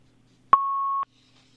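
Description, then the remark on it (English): A single steady electronic beep on a phone line during a caller's call to a live radio program, about half a second long, starting and stopping abruptly with a faint click, over a quiet low hum. “Well, we might be having some trouble with the phone line.”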